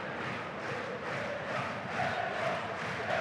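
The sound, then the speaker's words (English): A football crowd sings the chant for player Billy Not as he is being substituted, many voices merging into a steady, dense roar with a sustained melodic line rising slightly toward the end. No one speaks over it. “Yeah, Billy Not, they're singing his song.”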